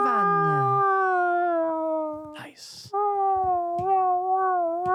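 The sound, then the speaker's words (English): A person imitates a howling dog with long, sustained wavering tones, broken briefly by a breathy noise before the loud howl resumes and holds steady to the end. “I turned into a dog.”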